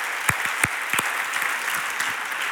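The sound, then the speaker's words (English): A crowd claps steadily in sustained applause, a dense wash of overlapping handclaps with a few sharper, louder claps standing out near the start. “Let's give him another great hand.”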